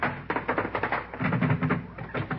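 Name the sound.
knocking on a door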